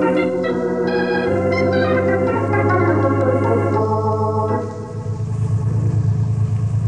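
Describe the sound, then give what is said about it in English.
Car engines of cars being readied outside rumble, a deep steady idle with shifting revs that swell, then drop back to a lower growl partway through, loud and continuous with no voices. “Okay, let's get outside and get the cars ready.”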